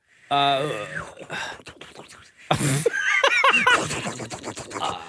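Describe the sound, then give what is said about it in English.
A voice imitates a boiling kettle, starting with a rising whistle-like tone, then a long breathy hiss with warbling, bubbly vocal sounds, fairly loud. “That is a kettle boiling.”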